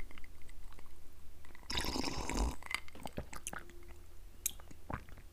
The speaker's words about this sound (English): Want to do a quick audio test. I'm going to sip some water really quick. Check, check, check. Get right up close to the mic. Here we go.